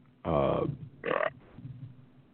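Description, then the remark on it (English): A loud burp, following a burrito dinner, rumbles out long and deep, followed a moment later by a second, shorter belch, then only faint background hum remains. “Ah, that was the burritos for dinner while we were.”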